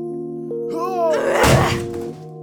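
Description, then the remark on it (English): A battering ram slams once against a door, a heavy, crunching thud with a brief rattle, loud, over a steady droning musical tone. “We're gonna knock these doors down and capture that traitor Sheba, son of Bikri.”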